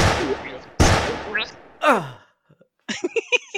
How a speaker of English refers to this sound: Oh, do I get a gunshot? You got a gunshot. Yeah, why are we doing gunshots for first name? Oh, there we go. Okay, that's a gunshot. I want a gunshot.